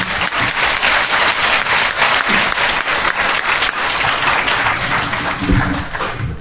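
Sustained applause from a sizable audience welcoming a speaker at a Confucius Institute lecture, dense overlapping claps filling the room at a steady, loud level for several seconds with no voices standing out.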